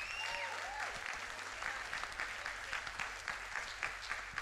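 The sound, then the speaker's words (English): An audience claps steadily throughout, a dense, continuous wash of many hands with a few faint whistles or cheers rising over it near the start. “Come on and clap.”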